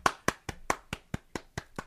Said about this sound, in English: Fair play to him. I didn't stand up, but I clapped.